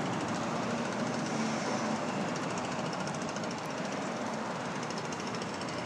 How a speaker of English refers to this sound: That is a leaf blower employee.